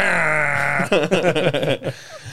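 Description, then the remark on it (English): A voice imitates a foghorn with a low, steady droning note held for about a second, then breaks into a few choppy, laugh-like vocal bursts. “In my free time, I do like to impersonate foghorns, yes.”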